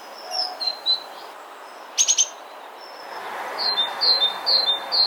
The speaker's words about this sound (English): Great tits have quite a repertoire of calls.